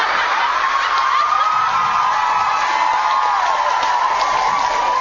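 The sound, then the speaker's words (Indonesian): A crowd cheers loudly and steadily throughout, a dense wash of voices with scattered whoops and shouts rising above it, and no pauses. “Durung rampung di sorak.”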